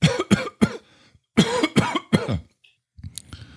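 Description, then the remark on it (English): Two bursts of harsh coughing, three quick coughs each with a brief pause between, followed by a faint rustle and a short throat sound at the end. “Are you done coughing?”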